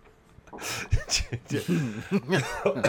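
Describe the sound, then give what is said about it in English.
Several rough coughs burst out in quick succession, followed by breathy, voiced sputters that sound partly like laughter as the fit trails off. “Yeah, you don't want to be coughing in this environment, do you?”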